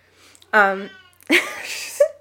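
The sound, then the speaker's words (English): A pet cat named Stitch meows twice: a short, tonal cry followed by a longer, rougher, drawn-out meow that ends on a brief higher note. “There's our cat.”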